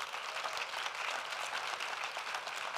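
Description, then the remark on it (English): An audience applauds a team going into the Moberly Correction Center with Prison Fellowship, a dense, even wash of many hands clapping at once, sustained and fairly loud for a few seconds with no voices standing out. “Give them a great big hand clap, that you know who to pray for.”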